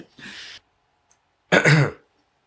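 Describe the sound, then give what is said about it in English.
Two loud throat clearings: a short raspy huff, a brief pause, then a heavier, voiced rumbling clear of the throat, with no talking around them. “Sorry. Would you like me to cough as well?”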